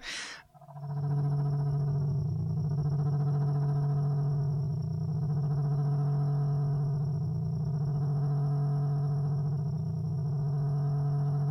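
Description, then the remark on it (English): Brain-stimulating frequency tones being played: a steady electronic drone of layered, sustained tones with a strong low hum and higher harmonics, pulsing gently in slow waves for about eleven seconds after a brief burst at the start. “So the premise here with these sounds and what they say that the science of this is doing is that it's stimulating very specific parts of the brain and with these frequencies addressing these concerns or these issues that need treating”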